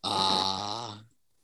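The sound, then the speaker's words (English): A dog staring out an open window lets out a single low, throaty growl lasting about a second, fairly loud, then it cuts off into quiet. “He's just told us the window's open and that dog is staring out the window a little bit.”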